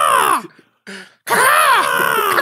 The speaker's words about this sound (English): What the fuck is that? What kind of butterfly is that? This is a crow. Did you hear that, crow? We're podcasting outside now. Fucking crows.